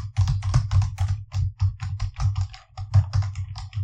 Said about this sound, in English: What about this? That's my keyboard. Do you want more of that?